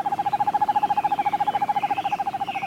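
A screech-owl gives a steady, rapid trill, a continuous run of quick tremulous pulses on one pitch, clear, heard alone with no voices.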